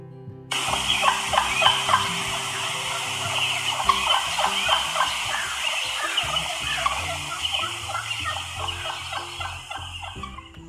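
Soft, repeated clucking and yelping notes from a wild turkey hen roosting in a tree, the tree call hens usually give first thing in the morning before flying down to the ground; a steady rhythmic series of muted calls lasting about ten seconds, with no talking.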